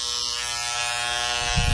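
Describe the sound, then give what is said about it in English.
An electric razor hums with a steady, high buzz while it shaves legs, holding a constant pitch throughout, with a brief low thump of handling near the end. “So he has shaved his legs.”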